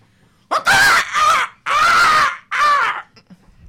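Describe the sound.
A person imitates a rooster's crow with a loud, strained vocal call in four bursts, the pitch rising and wavering through each segment before cutting off, followed by brief quiet.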